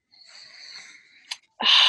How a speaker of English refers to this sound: Big sniff. Big sniff.